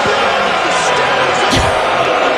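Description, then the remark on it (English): A big arena crowd cheering for LeBron James near the end of the third quarter in a steady, loud roar that fills the whole clip, with a brief low thump just past the midpoint and no single voice standing out. “This is the LeBron cheering.”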